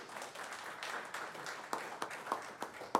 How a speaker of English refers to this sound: Y'all give a hand clap over here.